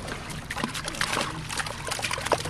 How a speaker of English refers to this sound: It's just after 9 o'clock in the morning on the South River just outside of Annapolis, Maryland. U.S. fish and wildlife biologists are tossing dozens of fish back into the water.